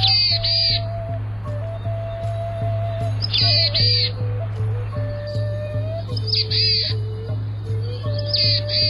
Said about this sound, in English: It's been said that the distinctive nasal vocalizations of the boreal chickadee sound a bit like a black-capped chickadee, with a head cold, like this.